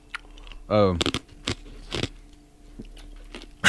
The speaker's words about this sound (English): I just realized I was chewing that ice right into the microphone. Sorry.